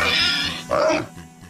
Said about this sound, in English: Today's show is brought to you by pigs, who snort with delight every time they hear that McDonald's is out of the McRib.